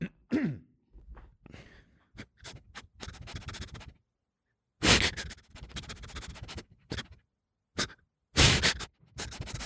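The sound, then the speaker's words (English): A person imitates a dog coming up and sniffing, with a series of quick, breathy snuffles and sharp nasal inhales, coming in bursts with short pauses, without other speech. “Here, this is a dog coming up and sniffing you.”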